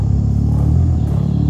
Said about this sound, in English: What it really is a gorilla, a male gorilla humming in the middle of a meal. We know from studies on chimpanzees and bonobos that great apes produce certain vocalization while they're feeding, so-called food-associated calls.